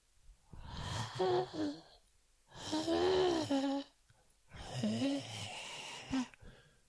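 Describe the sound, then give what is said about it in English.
A voice imitates wind blowing through wheat with three long, breathy whooshes, each rising and falling with a faint hum inside, separated by short pauses. “He can hear the wheat blowing in the wind.”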